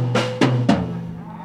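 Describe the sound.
A person's voice makes a low, droning moo like a cow, a sustained nasal hum broken by a few sharp breathy bursts, then trailing off.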